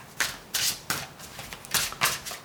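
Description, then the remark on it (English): Tarot cards being shuffled for a live reading, a series of soft, papery riffling bursts coming in an uneven rhythm, about six or seven brisk swishes with brief pauses between, no voices. “Take a moment to shuffle these until it feels right.”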